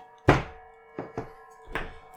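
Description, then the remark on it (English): Dice clatter onto a tabletop: one sharp, loud knock, then three softer bouncing thunks at uneven intervals, over a faint steady background hum. “Come on, fucking dice.”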